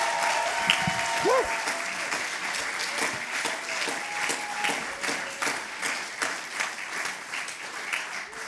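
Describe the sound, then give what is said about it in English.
A crowd at a poetry event featuring Foyle Young Poets and poets from John Masefield claps in a sustained, dense round of applause lasting several seconds, with a few whistles and cheers rising briefly over the steady patter of hands. “So give yourselves a massive round of applause.”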